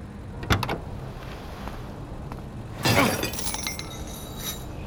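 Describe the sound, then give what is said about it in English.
Two hard metallic strikes smash a lock on the gate of an airport landing strip, the second louder and followed by a brief rattling, ringing clatter, over a steady low rumble with no voices. “smashed a lock on the landing strip's gate, and we drove right on the runway.”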